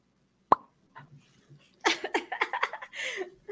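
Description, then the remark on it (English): A single sharp mouth pop rings out, followed by a few soft murmurs and then a run of choppy, breathy laughter. “Remember, you popped?”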